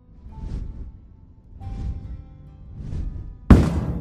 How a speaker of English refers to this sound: like something gigantic landed right outside his front door. It's probably one of those dragons coming and rubbing how cool they are again.